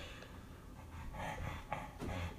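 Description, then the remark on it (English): A female dog pants heavily and rhythmically, quick breathy huffs repeating steadily over a low background hum with no one speaking. “Can you guys hear this dog? She's so loud.”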